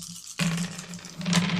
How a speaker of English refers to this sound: So the way the aftermath works is we all roll our dice, and just like we do with the tilt, we subtract the smaller total from the larger total.